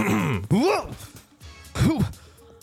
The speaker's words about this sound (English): I'm going to stand off just a little bit, you know, like kind of take a couple steps back, you know, a good 5 feet or so, and just kind of clear my throat.